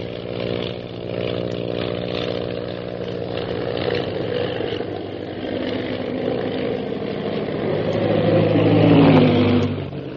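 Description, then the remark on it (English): A propeller airplane engine drones steadily with a buzzing, harmonic roar, then swells louder and whines upward in pitch near the end as the plane rocks crazily, goes into a spin and drops swiftly toward the ocean. “Suddenly, Shanghai Lil's plane rocks crazily and goes into a spin, dropping swiftly toward the ocean below.”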